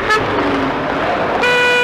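Car horns honk over a busy traffic rumble: a short toot near the start, then a louder, sustained blare that runs to the end.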